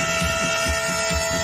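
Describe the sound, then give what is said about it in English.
A train rumbles past with a steady mechanical hum and a rhythmic, repeating clack of wheels on track, fairly loud, with no voices. “Can I get a crisp THX certified, lossless, Ogg Vorbis regarded train?”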